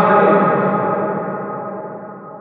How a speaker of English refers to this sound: Apply reverb to my voice using the power of my mind.